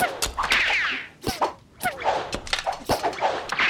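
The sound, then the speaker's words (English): A quick volley of Saxon arrows whizzing through the air and glancing off Ragnar's magic vest, with several sharp thwacks and swishes spread irregularly over a few seconds, and no one talking. “But the arrows bounce from Ragnar's magic vest and do him no harm.”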